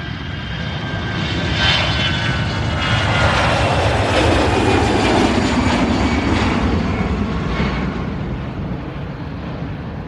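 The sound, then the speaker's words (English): A loud, sustained roar of the engines of American Airlines Flight 953, a heavy jet with 249 aboard, at JFK, fills the whole recording, swelling slightly in the middle with a broad rushing hiss and deep rumble, no voices present. “With 249 aboard the heavy aircraft, a malfunction occurs, resulting in some loose parts slamming against the side of the plane.”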